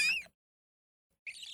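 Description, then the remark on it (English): A person imitates a seagull with a shrill, squealing cry, then pauses briefly before a second raspy, high-pitched call. The imitation is fairly loud, with no other sounds. “I can do that seagull noise.”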